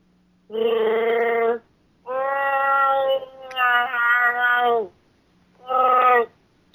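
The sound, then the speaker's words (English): Someone imitates a Wookiee roar with loud, throaty, tonal howls: a short cry, a long wavering one that dips and swells, then a brief final yowl. “Hello, and this is my Wookiee roar.”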